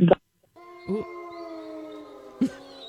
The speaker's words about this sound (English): Yeah, get those wolves going. Can we join the pack? Can we join the wolf pack?